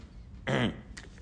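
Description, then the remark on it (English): A single rough, raspy throat clearing to get rid of something in the throat, about a third of a second long and fairly loud against a quiet background, followed by a faint short click. “I'm just clearing my throat because I have something in my throat.”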